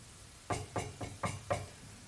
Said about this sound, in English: Someone was knocking on the door of my study.